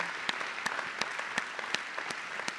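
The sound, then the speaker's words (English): A crowd at Storyside applauds the fathers steadily, a dense wash of many hands clapping with a few sharper individual claps standing out at irregular moments; no one speaks. “Will you keep your applause going?”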